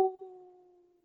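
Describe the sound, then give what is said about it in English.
A single short, steady-pitched howl voiced by a person imitating a wolf, starting abruptly and fading out over about a second, with no other sounds around it. “So as the wolf stood back on his two haunches, he howled out a pitch that felt quite haunting.”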